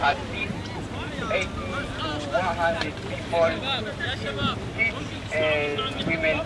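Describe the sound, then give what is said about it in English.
A rescue boat's steady low engine drone on the Mediterranean Sea about 50 miles off Libya at 2 a.m. in pitch dark, as rescuers move in to help a small fishing boat packed with migrants, with many overlapping voices shouting and calling out and some wind rumbling against the microphone. “Rescuers from Doctors Without Borders, or MSF, move in to help.”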